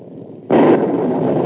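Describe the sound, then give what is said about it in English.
A low, steady rumble suddenly breaks into a loud, broad thunderclap, which then holds as a heavy rolling roar without fading. No voices are heard. “Naturally, you were listening to the thunder.”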